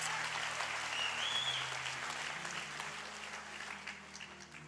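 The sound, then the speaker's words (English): An audience applauds Pastor Andre Wadsworth steadily, a dense wash of many hands clapping at a fairly even level for several seconds, with a low hum beneath and a faint whistle rising briefly. “Let's give him a round of applause, because he's just a great guy.”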